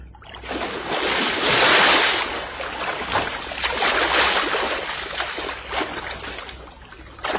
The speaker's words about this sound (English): Oh, so that's why you're going to dive into the sea.